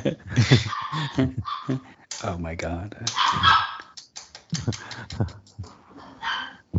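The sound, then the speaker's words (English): Short barks and high, whining whimpers from a person's dog come in quick bursts, mixed with people talking and exclaiming over them. “It's …'s dog.”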